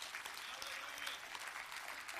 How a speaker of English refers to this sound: Well, give the Lord a hand clap of praise in this house.